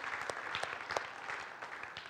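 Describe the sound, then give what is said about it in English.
An audience at a Christmas service applauds the worship team and sound team after their singing, a dense, steady wash of many hands clapping with a few sharper individual claps standing out, sustained at an even level for the whole stretch. “Can we give them a round of applause for that?”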